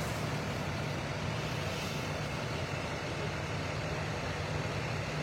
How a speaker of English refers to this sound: It is a very cool looking truck. Look at that. Right there.